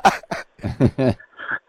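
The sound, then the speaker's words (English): A series of raspy throat clearings and short coughs in quick, uneven bursts, fairly loud, with brief pauses between them and no talking, from someone drinking coffee with milk and cream. “Yeah, I'm just clearing my throat because, you know what bloody milk and cream and stuff does, yeah?”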